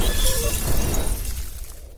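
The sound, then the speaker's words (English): A spaceship with engine failure crash lands on DKE Toy Planet: a loud, dense crash with shattering debris and heavy low rumble, sustained for about two seconds before gradually thinning and fading. No voices. “DOV-2, we have engine failure. We must crash land on DKE Toy Planet.”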